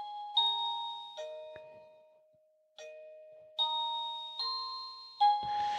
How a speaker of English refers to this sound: we have now changed the doorbell, and if Steve is ready, he will press it again